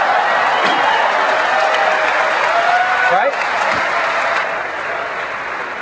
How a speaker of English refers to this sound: We very much appreciate the applause, but you shouldn't be applauding because this is how it ought to work.